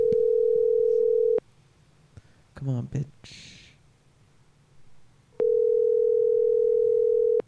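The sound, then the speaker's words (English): An outgoing call's ringback tone: two long, steady mid-pitched beeps separated by a pause, during which a voice mutters impatiently. “Simon says pick the fuck up.”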